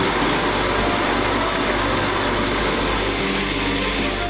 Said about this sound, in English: So put it in the blender and blend it on high for about 15 or 20 seconds.